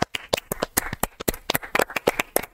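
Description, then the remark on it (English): A rapid run of sharp, loud hand claps for the Realmers, the stream's viewers, about twenty in a couple of seconds, in a slightly uneven rhythm with no voices. “I'm clapping for the Realmers, not for my performance.”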